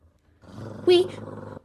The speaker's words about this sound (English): The dogged lips of Anubis snarled at us in contempt, showing us his scary sharp teeth.